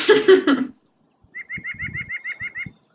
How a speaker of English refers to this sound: There are some birds up there, the nuthatches, and they go, hah, hah, hah, hah. Well, it sounded like they were laughing at me for choking down this terrible food.